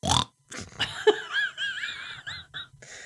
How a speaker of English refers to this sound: That is my seal of approval, right? But from now on, right? If I really like your horse, you get the snort.